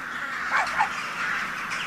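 A dense chorus of many birds in the trees and on a power line calling at once, harsh cawing cries layered over a steady chattering wash, moderately loud and continuous with a couple of sharper calls standing out.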